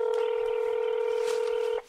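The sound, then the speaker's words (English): A telephone keypad tone sounds as one steady, mid-pitched electronic beep while a call to debt collectors is dialed, holding for nearly two seconds before cutting off abruptly into quiet. “For her, that means calling debt collectors.”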